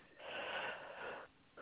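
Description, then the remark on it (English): A person yawns, a drawn-out, breathy exhale lasting about a second, followed by a brief pause and the start of another short breath. No one speaks. “Somebody's yawning.”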